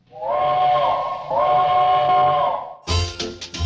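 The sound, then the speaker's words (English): A train whistle sounds two long, loud, steady blasts in close succession, then a few short, harsh bursts of rumbling noise follow. No one speaks. “The train and you're talking, you know, I like that.”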